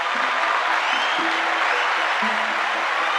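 Steady audience applause, a dense wash of many hands clapping at once that stays loud and even throughout, with no voices standing out.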